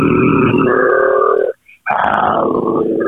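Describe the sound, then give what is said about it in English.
A man's voice imitates a low, rough growl in two sustained bursts separated by a brief pause, loud and gravelly with harmonic buzzing, with no other speech. “I growl, he might come in.”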